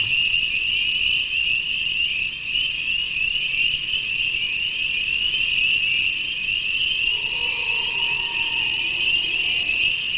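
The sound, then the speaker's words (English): Recording of a purported Bigfoot call from Conway, New Hampshire, 2011, played from a phone over Bluetooth: a steady, shrill high whine runs throughout, and late on a faint drawn-out tonal wail rises and falls beneath it. No one speaks. “You know, as soon as I heard that, it reminded me of a supposed Bigfoot call actually from New Hampshire from 7 years ago.”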